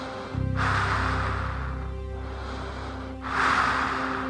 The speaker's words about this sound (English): But you definitely will hear something, and that's your own breath, because you're wearing a spacesuit, and you'll constantly hear that breathing sound of you.